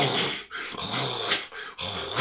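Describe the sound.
Someone imitates a wheezing pug, mimicking a pet dog named Susie: a few loud, raspy, snorting breaths in quick bursts separated by brief gaps, with a rough, growly texture.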